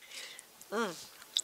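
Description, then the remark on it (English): Quiet chewing with soft moist clicks and smacks as someone eats soft dried meat during a radio show, broken midway by a short voiced hum of approval. “We're sitting around a radio show talking about and eating, but how does one normally prepare this to eat?”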